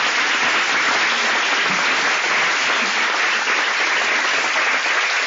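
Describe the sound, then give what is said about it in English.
An audience claps steadily to welcome a speaker for about five seconds, a dense, even wash of many hands at a loud, constant level, with no voices standing out above it. “Help me welcome to California.”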